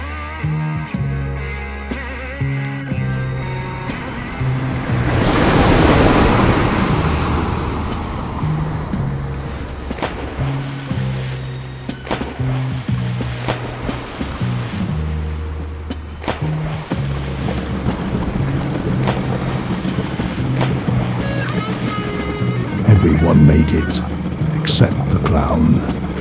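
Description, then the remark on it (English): A jet ski roars across tropical ocean waves toward an island beach about half a mile away, its engine droning steadily while surf and spray rush around it, with a loud surge of splashing early on. “You will parachute into the tropical waters, and then you will use the latest technology to jet ski a half mile to the beach of the island.”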